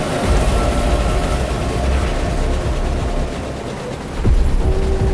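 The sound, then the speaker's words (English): A steam train with the sign KA949 on its front rushes past, a loud, dense rumbling roar that holds steady, dips briefly, then surges again near the end. No voices are heard. “He looks up just in time to see the sign KA949 on the front of a steam engine.”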